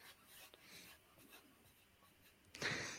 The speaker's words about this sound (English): I've just opening the paper. I've got a glimpse of it, and it truly is what I've always wanted.